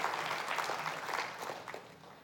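A steady round of applause from a group, a dense crackle of many hands clapping together at a moderate level, sustained for a couple of seconds with no voices over it.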